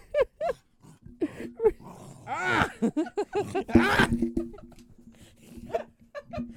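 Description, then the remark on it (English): A dog growls and snarls, its rough vocal bursts rising and falling over several seconds, mixed with short clicks and shuffling sounds. “Where are the people in this family that care about this dog at?”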